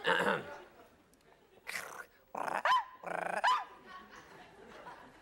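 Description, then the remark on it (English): A man, an actor testifying in court, imitates a small dog, letting out four or five sharp, yappy barks in uneven bursts, fairly loud, with short quiet gaps between them. “It also says here you can do a dog barking.”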